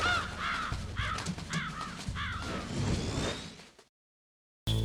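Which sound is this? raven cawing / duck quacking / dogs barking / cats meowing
raven cawing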